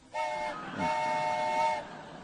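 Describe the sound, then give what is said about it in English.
A steam train whistle on a train bound for Seattle sounds twice, a short blast followed by a longer one, with steady harmonic tones over a rushing background hiss, fairly loud. “It begins on board a train. Well, come on. It gives our sound effects guy excuse to be what it feels like to be a whistleblower.”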